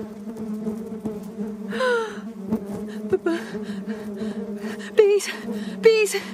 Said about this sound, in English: Bees are in my room. Bees! Are you surprised? Bees!